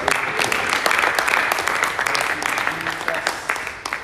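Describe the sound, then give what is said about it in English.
A crowd applauds steadily, a dense wash of many hands clapping at once, fairly loud and sustained from start to finish with no talking on top. “You've got a good round of applause.”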